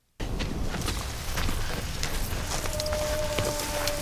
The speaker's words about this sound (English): You hear that? That was a gust. That's a real musical gust.